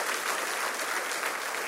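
Steady applause from a large crowd welcoming the men and women at God Behind Bars fills the space, dense and continuous with even loudness throughout, a broad wash of many hands clapping at once with no voices standing out.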